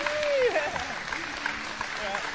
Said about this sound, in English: Let's clap these guys.